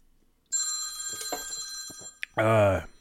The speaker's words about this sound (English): The phone is ringing. This is where we take a call.